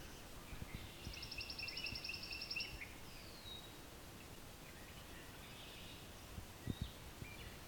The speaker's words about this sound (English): So we also have here pine warbler.